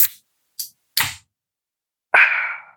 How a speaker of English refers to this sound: Okay, and now I'm going to open German Krombacher Pils. Ready? Here's the ASMR for me.